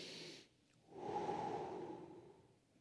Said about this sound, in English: You're all sitting here right now. Everybody take a deep breath.